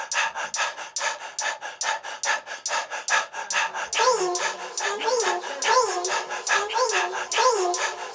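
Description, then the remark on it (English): A dog pants heavily in quick, steady bursts, about three breaths a second. Partway through the panting grows louder and raspier, with a whiny, wheezing tone on each breath. No one speaks. “Kind of shout out the dog hyperventilating.”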